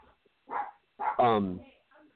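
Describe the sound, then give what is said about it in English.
A dog barks in a few short, loud bursts, a quick yap followed by a longer, drawn-out bark, with a faint yip trailing at the end. “Dogs are acting crazy.”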